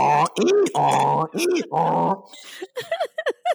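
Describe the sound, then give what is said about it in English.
A person imitates the bray of one of their own two donkeys with their voice, loud, harmonic hee-haw cries alternating in a rough rhythm, then trailing into shorter, breathy, wavering honks. “Verbally make the sound that your donkey makes.”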